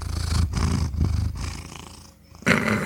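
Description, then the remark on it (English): A cat purrs loudly while being held, a low rumbling that pulses in steady breaths, briefly easing off before swelling again near the end. “He purred.”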